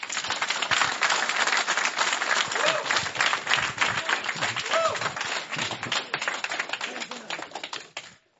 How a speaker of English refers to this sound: A warm applause for Will Happer.